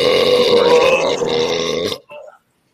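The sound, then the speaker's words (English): A loud, drawn-out burp lasting about two seconds, deep and rumbling with a steady tone, ending in a short faint gurgle, with no talking over it. “I got just a couple of dribbles, but like I said, I was talking about the burp.”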